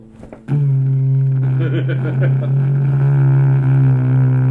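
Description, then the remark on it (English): A voice imitates a vibrator buzzing against a microphone: a steady, loud, low-pitched droning hum that starts abruptly after a brief pause and holds unbroken for about four seconds. “Episode, and you're like, next episode, using my vibrator on the microphone. Hold on. I wonder if I can imitate that.”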